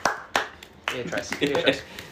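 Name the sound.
round of applause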